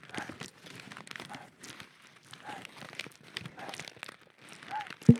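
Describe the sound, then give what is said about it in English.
Close-up crinkling of plastic or paper, a continuous crackly rustle with uneven bursts, quiet and intimate, ending with a sharper thump near the end. “And if not doing that, what they're doing is they're slowly crinkling up plastic or paper or any other objects around them really close to the microphone.”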